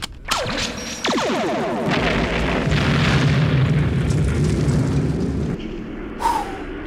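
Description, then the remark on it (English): A sci-fi weapon fires space torpedoes with a sharp zap and descending whine, followed by a massive rumbling explosion that roars for several seconds before cutting off, then a final brief whoosh. “Fire the space torpedoes!”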